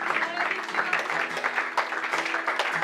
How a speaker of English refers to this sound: Come on, if you believe that today, just clap your hands to the Lord one more time. Hallelujah. Hallelujah.